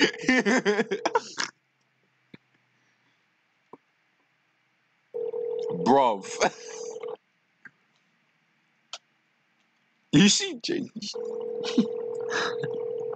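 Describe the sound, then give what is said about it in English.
A house phone ringing on speakerphone, in three tinny, steady bursts a few seconds apart with silence between, while people talk briefly over the rings. “Imagine having like a house phone and putting it on speaker.”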